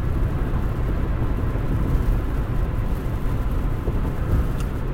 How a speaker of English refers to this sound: I'm accidentally speeding right now. Gotta slow shit down. I tried to use the cruise control, but it doesn't work.